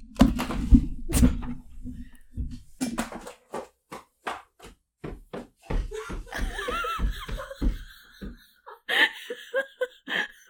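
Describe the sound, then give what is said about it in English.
A woman's heavy footsteps stomp on stairs in a quick, uneven run of loud thuds, following a stretch of laughter at the start. “She's just stomping on the stairs.”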